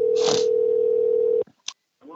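A single steady telephone ringing tone hums loudly for over a second, then cuts off; a faint click follows before a voice starts speaking at the very end.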